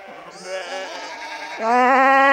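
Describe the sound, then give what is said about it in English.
Sheep bleat in a steady chorus, several wavering baa calls overlapping, the loudest one swelling up near the end, clear with no talking. “And hundreds of levitating sheep float in above the audience's heads.”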